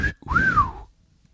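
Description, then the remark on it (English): An admiring wolf whistle at a picture seen on Instagram: a short steady note, a brief break, then a longer swooping tone that rises and falls away, heard on its own with no talking. “I just whistled like that.”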